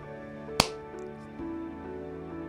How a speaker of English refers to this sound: And I'm going to clap.